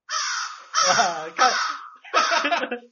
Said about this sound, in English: It's actually a crow, but and it's still going. It's still going.